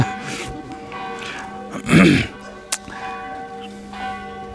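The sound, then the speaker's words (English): Church bells ring with a steady, sustained tone and lingering overtones, joined by a brief louder burst midway and a sharp click, with faint background murmur. “Once these bells stop, I will finish.”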